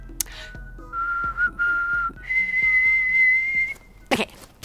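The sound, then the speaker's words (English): Someone whistles a short tune of three steady notes for another person to copy: two lower held tones, then a longer, higher one. It is clear, with no talking, ending with a couple of sharp noise bursts. “Now, I'm going to whistle something, and you copy me.”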